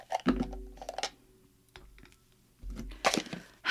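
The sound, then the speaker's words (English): Brittle, papery crackling and light clicks as a dried orange slice is picked up for a tequila drink, in two short bursts separated by a brief quiet gap, with no talking. “I'm not gonna throw the old lime in. I'm gonna grab an orange slice.”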